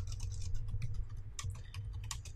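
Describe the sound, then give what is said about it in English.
Rapid, loud typing on a computer keyboard, a steady clatter of many quick key clicks over a low background hum, with no voices. “How loud I'm typing, as everyone loves.”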